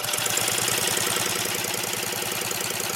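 An electric motor, used like a car's starter motor, steadily cranks a hydrogen engine that never fires because the hydrogen is not turned on. A loud, continuous whirring grind with a fast, even chugging pulse holds for the whole stretch.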